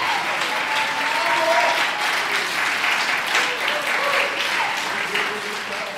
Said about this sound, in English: Come on, jump to your feet and clap your hands and shout, there's delivering power in this city.